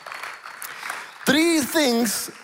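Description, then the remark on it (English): An audience claps in a steady, diffuse wash of applause, then a loud voice rises above it with a drawn-out shout while the clapping carries on underneath. “Let's give God for that a big shout of applause.”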